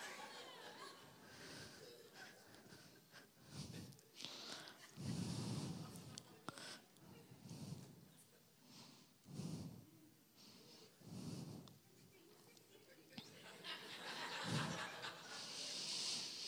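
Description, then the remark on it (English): A voice mimics snoring with a series of rough, rhythmic snorts and breathy exhales, repeating about every two seconds, fairly loud against a hazy background. “Don't even, you are snoring. And you want to keep snoring.”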